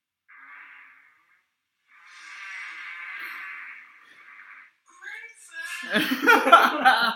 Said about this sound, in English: God, that was the longest fart I've ever heard.